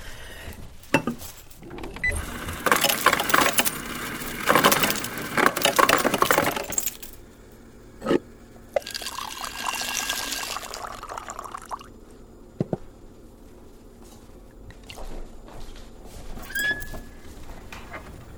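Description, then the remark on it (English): Ice cubes clatter and clink against a glass as ice is put into a glass of water in a busy burst, then liquid pours steadily, followed by a few scattered clicks and small drips. No one speaks. “I put ice in it.”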